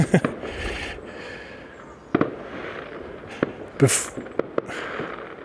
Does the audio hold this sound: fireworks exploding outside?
yes